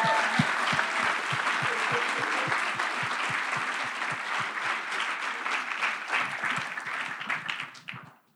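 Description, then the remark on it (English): An audience applauds during a presentation of an auditorium project's phase one cost, dense overlapping claps with a few sharper, rhythmic claps standing out, holding loud for several seconds before thinning and fading out at the end. “Can I get a round of applause for...”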